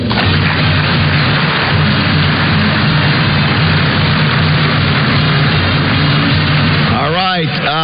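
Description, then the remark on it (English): An audience at an award ceremony applauds the finalists loudly and steadily for several seconds, a dense, even wash of clapping with a low murmur of crowd voices underneath. “I think we need to give another round of applause for our great finalists.”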